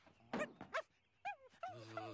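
A dog whimpers sadly in a few short, high-pitched whines, with two quick yelps at first and then longer wavering whines, fairly clear.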